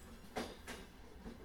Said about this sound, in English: The train moved on.